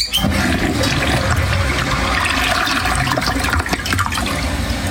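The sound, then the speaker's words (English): An actual toilet flushes loudly, a steady rush of swirling water that keeps going for several seconds with a gurgle toward the end and no one speaking. “So this is an actual toilet noise recorded by one of the three of us.”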